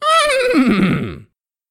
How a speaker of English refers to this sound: are you interviewing a horse? Is that... I just heard?